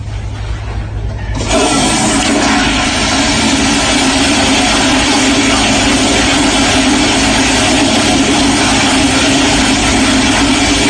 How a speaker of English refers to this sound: If you were listening to the show yesterday, you heard us talking about London's longest and most aggressive toilet flush. I'm convinced I found it over at the Covent Garden Market. Check it out.